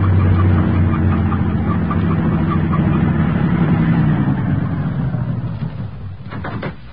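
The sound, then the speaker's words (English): A heavy truck with no headlights on rumbles past, its deep engine drone loud and steady before fading away, followed by a few sharp clanks near the end. “The truck has no headlights on, but it's going to pass right by us.”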